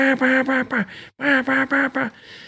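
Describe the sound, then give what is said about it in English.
A duck call blows a loud, hunting-style hail sequence: two runs of four or five raspy, descending quacks with a short gap between them, no talking. “I mean, there was this one spot that I hunted in the timber off the Mississippi River down Louisiana, and I stayed on a hail call, on a hunting style hail.”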